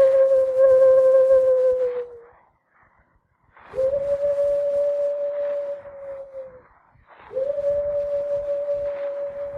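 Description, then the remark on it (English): Sacajawea imitates a bird call with three long, steady, mid-pitched hooting notes, each held for a couple of seconds and separated by short pauses, fairly loud over faint background noise. “I make a bird call.”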